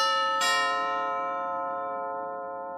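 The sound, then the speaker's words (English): A doorbell chime at Miss Montgomery's front door rings out with a bright metallic strike, its tone lingering and slowly fading over a couple of seconds, alone with no voices. “A strange feeling overcame her as soon as she rang the doorbell.”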